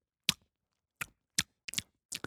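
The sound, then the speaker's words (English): Wet, smacking mouth sounds of someone chewing and tasting bourbon, the so-called Kentucky Chew: about five short, crisp clicks and smacks in an uneven rhythm, heard alone with no talking. “Yeah, they hate when you can hear the tasting. It's the stirring of the mac and cheese. They call it the Kentucky Chew, is what they call that.”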